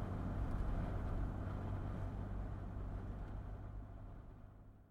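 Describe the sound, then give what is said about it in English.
A car engine rumbles with a steady low hum, gradually easing and quieting as a state trooper's car pulls up behind another car and slows to a stop on a black night with a storm coming on. No voices are heard. “And then I saw them in the mirror, the headlights sweeping up behind me. A car. It had come out of nowhere.”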